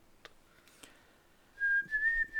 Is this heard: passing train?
no